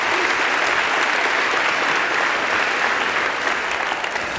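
Sustained audience applause at a Sunday church service, welcoming a guest speaker coming up to give a sermon: a dense, steady wash of many hands clapping at an even, loud level for several seconds with no talking over it.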